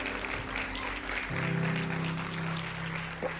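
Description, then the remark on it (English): An audience applauds with steady, dense clapping throughout, while a sustained low keyboard-like tone enters partway through and holds beneath the clapping. “Jesus, you can clap. I'm sorry to cut that off.”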